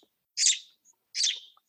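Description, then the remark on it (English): A small pet bird chirps twice, each call a bright, slightly buzzy burst about a quarter second long, separated by a short pause with nobody talking. “She wanted to say hi, and she actually told me that this is going to be amazing, fun, and exciting interview.”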